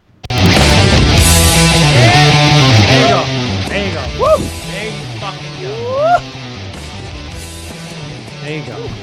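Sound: puppy barking and whimpering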